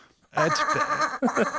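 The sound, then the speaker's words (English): A sheep bleats loudly, a long wavering bleat followed by a shorter second one after a brief break, with no talking; a sound effect played as a noise for football player Ricky Seals-Jones. “That's our Ricky Seals-Jones blended with a sheep.”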